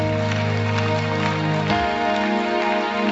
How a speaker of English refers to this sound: Oh, please keep clapping.